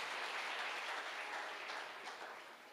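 audience clapping

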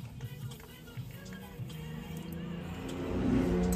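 car driving past

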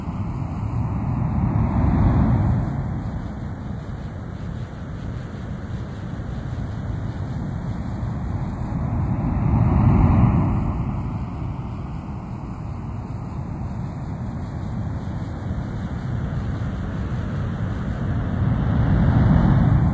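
ocean surf waves

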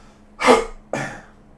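throat clearing

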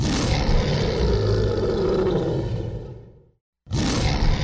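lion roaring

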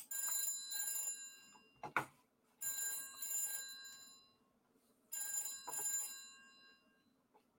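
telephone bell ringing

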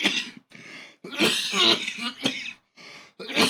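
delayed cough

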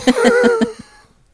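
dog barking

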